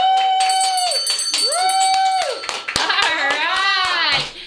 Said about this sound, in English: He has gotten three rings of the bell, and this one is from the Gift of Hope Foundation